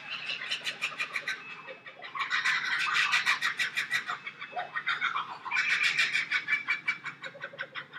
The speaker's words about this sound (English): Here he is. Here he is. That's a kookaburra. In fact, that's three kookaburras.